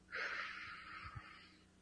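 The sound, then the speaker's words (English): A single slow exhale through pursed lips, as if breathing out through a straw, a steady airy hiss lasting over a second, fairly soft, with no talking. “Breathe in and then breathe out through your mouth like you're breathing out through a straw.”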